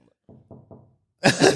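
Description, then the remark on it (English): A knocking sound effect: three quick, evenly spaced knocks, moderately loud, followed by a sudden loud, harsh burst of noise right after. “PTSD of like knocking or something”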